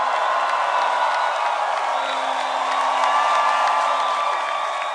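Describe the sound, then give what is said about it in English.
An audience of many voices shouting praise to God and cheering together, loud and sustained for several seconds with scattered whoops rising above the roar. “Give the Lord a shout of praise in this place.”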